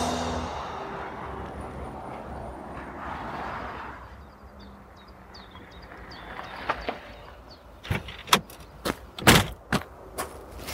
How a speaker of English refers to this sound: We join them as she pulls up and they are about to get out of their cars.